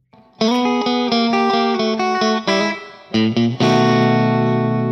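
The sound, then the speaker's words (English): A short distorted electric guitar riff played as story music: a quick run of bright, buzzing notes climbing and shifting in pitch, then a few lower stabs ending on a loud, sustained chord that rings out. “And I should actually drop our story music here.”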